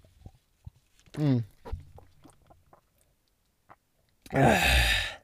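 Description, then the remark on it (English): Someone takes a sip of water: quiet lip and mouth clicks, a brief gulping swallow, then a loud, breathy exhale. No speech. “Let me get a sip of this water real quick.”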